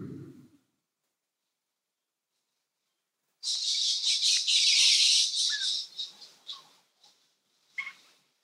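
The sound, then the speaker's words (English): After a brief low sound and a few seconds of silence, a busy burst of high, twittering bird chirps rises and fades, followed by a couple of isolated chirps. “The sounds of the birds, the sounds of the wind, the rustle of the trees, your thoughts, all of it just phenomena passing through.”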